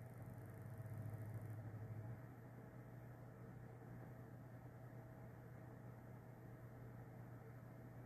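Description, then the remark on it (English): A steady, low mechanical drone like a car engine idling, which eases down slightly after about two seconds and then holds an even, quieter hum to the end, with no voices. “Wait, it slowed down. Car engine?”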